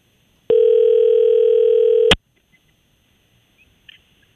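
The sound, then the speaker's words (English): A loud, steady telephone dial tone hums for under two seconds as a phone line dials out, then cuts off abruptly with a click, leaving a quiet background with a couple of faint chirps. “Also, see if I can get this phone line to dial out.”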